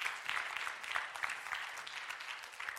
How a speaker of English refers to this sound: Come on, give the Lord a good clap offering.